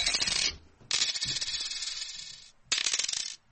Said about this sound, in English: Go put some coins in my bucket anyway.